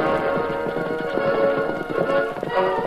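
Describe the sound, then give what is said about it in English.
The horses Scout and Silver gallop, pulling a rattling light wagon that bounces behind them: rapid, continuous clip-clopping hoofbeats at a driving pace, fairly loud, over a dense rumbling background that holds steady throughout. “The light wagon bounced crazily behind the racing horses with a familiar voice of the Lone Ranger shouting, Faster, Scout.”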